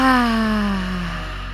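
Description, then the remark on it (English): A single forceful, voiced lion's breath exhale with the tongue stuck out during a breathing practice, loud, starting strong and sliding downward in pitch as it fades over about a second and a half, with no talking. “And exhaling, lion's breath out.”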